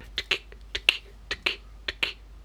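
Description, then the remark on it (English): A mouth imitation of a pen being clicked on and off: four pairs of sharp, bright clicks spaced at a steady rhythm, each pair a quick double tick. No one speaks. “It's him just clicking on his pen on and off.”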